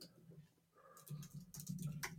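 Soft, irregular clicking of someone typing on a computer keyboard, quick bursts of keystrokes picking up after a brief quiet start, fairly faint with no talking.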